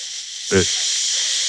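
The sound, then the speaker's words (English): A person imitates white noise with a steady, bright hiss held for over a second, briefly interrupted by a short voiced grunt partway through, no words spoken. “white noise is what is described as a combination of sound frequencies that ends up just sounding like a hiss.”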